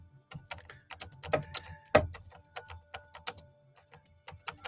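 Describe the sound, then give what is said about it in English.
Rapid, irregular clicking of keys being typed on a keyboard, fairly quiet, with one louder tap partway through and no voices, as someone types a post for Instagram. “I'm just typing this for Instagram right now.”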